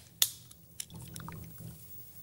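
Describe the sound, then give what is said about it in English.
A sharp crack and brief hiss as a bottle of Ellicottville Brewing orange chocolate blonde ale is opened, followed by a soft, steady gurgling pour with faint fizzing, fairly quiet, with no voices. “Why don't you pour us a beer there,”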